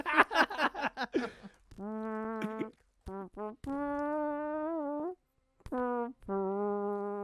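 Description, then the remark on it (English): A brief burst of voice gives way to a man farting a tune: a series of long, buzzy fart sounds held at steady pitches, forming a slow melody with short gaps between notes, loud. “That was a fart.”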